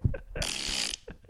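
A wet, sputtering recorded fart sound effect lasting about a second, with a brief noisy burst in the middle framed by short low blips, loud with no one talking, played as a track from an album of fart sounds.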